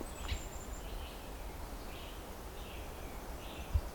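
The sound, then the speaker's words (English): Faint, repeated creaky calls of what may be a tree frog, sounding roughly once a second over a steady low outdoor rumble, with no one talking. “A frog. Could be a tree frog.”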